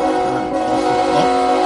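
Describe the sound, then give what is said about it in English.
A loud, sustained train horn sound effect blares steadily for under two seconds, its rich chord of tones holding without a break before cutting off abruptly. “Dude, pain trains all around.”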